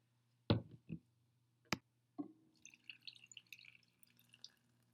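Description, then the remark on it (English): A few sharp splashes and clinks from a pour, then a steady, soft crackling fizz of freshly poured hard kombucha, flavored with hibiscus and lemon, bubbling, with no one talking. “All right, got some good fizz.”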